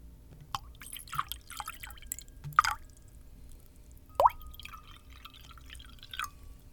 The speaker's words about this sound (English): Let's have a toast, the coach said. Cleo pours everyone a drink, including herself.